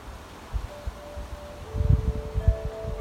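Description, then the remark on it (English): Wind rumbling and gusting outdoors in low, uneven bursts that build toward the end, with leafy rustling and a few faint sustained tones drifting above; wind chimes are also sounding. “Hear the sound of my voice, the wind behind me, the wind chimes, whatever noises you hear going on in your own space.”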